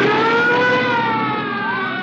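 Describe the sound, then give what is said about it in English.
A police car siren wails steadily as police signal a car to stop, its pitch slowly gliding, over a loud rumble of car engine noise, continuous for the whole two seconds with no talking. “What's that? Police cars.”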